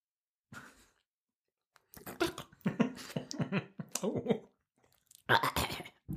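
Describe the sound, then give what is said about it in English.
Someone drinks a bird's nest drink, a liquid with slimy chunks, and chews it: irregular wet slurps and mouth clicks come in a short burst, then a dense cluster, then a final loud flurry, with no clear speech. “Drinking Bird's Nest”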